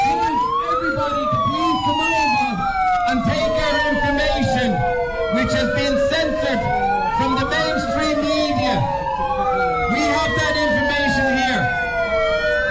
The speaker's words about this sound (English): So is it my understanding that that siren started when counter-protesters tried to have their voices heard? Yeah? Okay. Then sirens got turned out on so that they could not be heard.